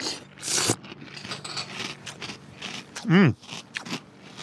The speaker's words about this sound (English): Fruity Loops, a lot of colors. Okay, I'm going to take a mouthful.